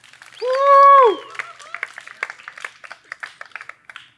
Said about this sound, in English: Thanks, Owen. You can go down. Round of applause for Owen, dude.